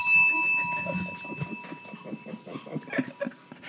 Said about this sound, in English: This shampoo came in today. It's a blue or violet shampoo. And it's to, yeah, that's what the alarm was for. She said, Santa, set the timer to 30 minutes.